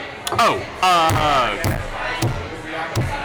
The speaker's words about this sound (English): Table slapping is being picked up by the mic.